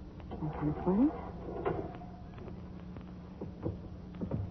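A heavy mausoleum door in a cemetery grinds open with a short, rising creak near the start, followed by a few dull knocks and shuffling against a low, steady background hum.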